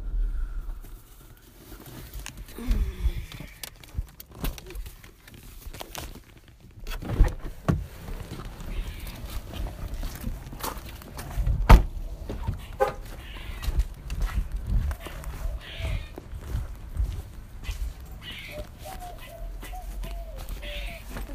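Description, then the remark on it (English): Footsteps of a person walking steadily into their house, soft irregular thuds with a sharp knock partway through, over low background rumble and faint scattered chirps. “Yeah, I'm actually going to keep recording, but I'm going to move into my house, so I probably will be quiet while I'm walking in, because, yeah.”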